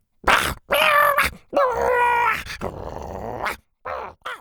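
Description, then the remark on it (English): Three Triceratops dinosaurs lock horns and growl and snarl, loud and guttural, in several rough bursts of about a second each separated by brief pauses, the growls overlapping with no speech. “Before she could finish, all three of the Triceratopses locked horns and started growling.”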